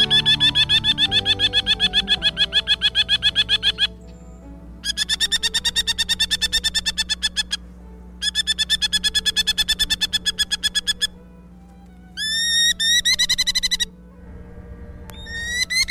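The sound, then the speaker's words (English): A merlin falcon gives rapid, harsh chattering calls in several long bursts of evenly spaced, high-pitched notes, with brief pauses between them and a final short rising series. No one speaks. “And the Merlin sounds kind of mean, too.”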